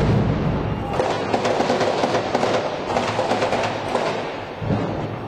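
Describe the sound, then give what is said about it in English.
Bursts of gunfire crack out repeatedly in Jenin as crowds scatter, over a constant, loud wash of noise, the sharp reports coming in irregular clusters with no voices heard. “That fire is coming, I think, from Palestinians, firing out, perhaps, at the Israelis.”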